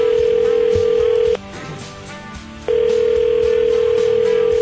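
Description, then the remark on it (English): A telephone ringback tone while calling two giveaway winners on the Animal Radio show: two long, steady, mid-pitched rings separated by a short quiet pause, loud and clear with no one talking. “Dialing up 2 winners, a cat winner and a dog winner.”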